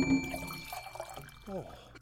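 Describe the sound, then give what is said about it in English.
Water sloshes and burbles briefly in a bowl of water with fish swimming in it, at a soft level, with a gurgling, voice-like warble rising near the end. “No, I mean you're a bowl of water with fish swimming in it.”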